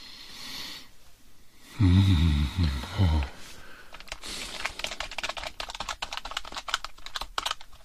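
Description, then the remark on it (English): Quick, steady clatter of keys being typed on a computer keyboard, many crisp clicks in a fast irregular rhythm, preceded by a brief low vocal groan. “Where did the keyboard come from?”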